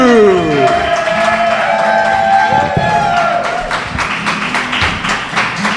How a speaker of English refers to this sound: Let's get a thunderous applause. Let's get it going right from the start. Come on, baby. Give me that claps.